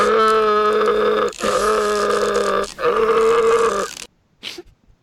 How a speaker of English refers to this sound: Here. Things I do for the show. Here's the gore yell.